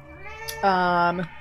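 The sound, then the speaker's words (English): A single loud cat yowl, starting with a rising whine and swelling into a strained, drawn-out cry that cuts off abruptly after about a second. “Somehow, it's like that die landed on a cat, and that just helped yeah, you.”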